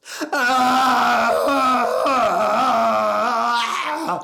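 A man on the phone to his boss lets out a long, loud scream lasting about four seconds, his voice strained and wavering in pitch before it breaks off, alone with no talking.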